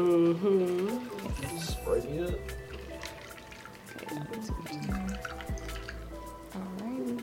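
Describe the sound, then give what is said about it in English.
Sprite pours into a glass with a steady trickle and dripping splashes while people talk over it. “Sprite. Mm-hmm. Sprite it.”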